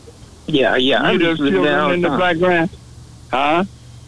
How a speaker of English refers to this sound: do you hear those children in the background singing?